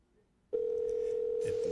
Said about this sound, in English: Oh, I've been saying, where's that phone ringing? I'm trying to get this mystery guest. If this mystery guest would answer.